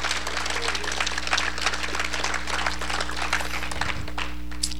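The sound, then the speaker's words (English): An audience bursts into steady, dense hand clapping for God, many hands together producing a continuous crackling wash of applause with a low hum underneath throughout. “Give God a hand clap.”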